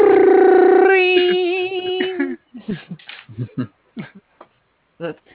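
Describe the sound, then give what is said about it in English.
A loud electronic school bell tone rings for about two seconds, first a steady buzzy drone and then a wavering warble, before it cuts off and people start talking in short bursts. “School bells sound like a phone.”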